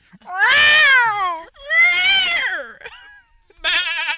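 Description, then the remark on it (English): A voice imitates a parrot with three loud, wavering, squawky calls; the first two are long and warbling, and a shorter, buzzier one follows after a brief pause. “We were all going to make animal sounds at the same time.”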